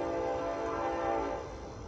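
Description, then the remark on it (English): A train horn blares steadily, a sustained harmonic tone lasting the full couple of seconds with a low rumble underneath, fading slightly toward the end. “Now, if y'all hear that train in the background, hey, you already know what it is.”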